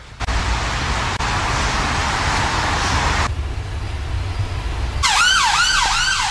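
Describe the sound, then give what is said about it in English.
Street traffic noise in Soho gives way to a loud ambulance siren near the end, its rapid rising-and-falling wail cycling over and over against a steady rumble of road noise. “And that's like the fourth ambulance we've seen already in the first like 15 minutes.”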